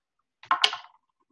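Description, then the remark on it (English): A brief clatter of dice tumbling across a hard tabletop, two quick knocks followed by a short rattle that settles into silence; the roll comes up a natural 20. “Natural 20. What? It's like a beast! It's the same dice, too!”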